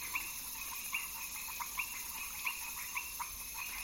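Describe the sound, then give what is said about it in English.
Frogs call in a repeating series of short, bright chirps, roughly one every half second, over a steady high insect hiss. No one speaks. “And the second category of species that you hear are the reptiles and amphibians.”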